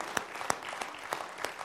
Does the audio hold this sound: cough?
no